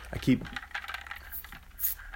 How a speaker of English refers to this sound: Oh my goodness. Did you hear my ice? Hear my ice rattling? I got that ice in there.